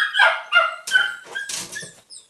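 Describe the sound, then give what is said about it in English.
A dog barks in a quick run of about six high-pitched, yappy barks, fairly loud, with no voices. “The dog is going to go a little crazy, but whatever.”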